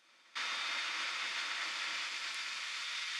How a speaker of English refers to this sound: What sounds like a water boiler and frying a totally regular egg in the background is my lovely computer. Yeah, it's not a good situation. It's just, you know, the fan is like on constantly whenever I'm using Ableton,